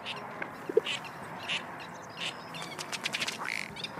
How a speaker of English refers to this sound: They're birdwatchers, drawn to the Agua Hedionda Lagoon Ecological Reserve by the many birds that live here or visit on long migrations.